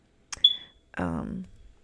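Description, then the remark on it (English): A single short, high-pitched smoke detector chirp sounds after a faint click and fades quickly, followed by a brief voiced murmur. “I know I'm going to get rid of this beeping.”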